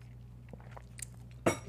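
A quiet sip from a wine glass, with faint clinks and a sharper clunk as the glass is set down near the end, over a low steady hum. No one speaks.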